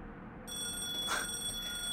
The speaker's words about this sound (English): And the phone kept right on ringing. "I'm not going to answer it," I said.